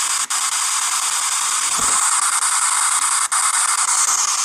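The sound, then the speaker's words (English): Continuous loud radio static hisses across the whole clip, with brief dropouts where a scanning radio jumps between channels. No voices are present. “It was so in the static.”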